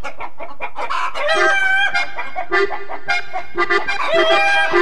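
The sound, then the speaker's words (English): A loud, bouncy novelty dance tune plays with a quick, steady beat, bright squawking melody lines and chicken-like clucking sounds woven through the music, with no voices. “This particular version is performed by …. And this is ….”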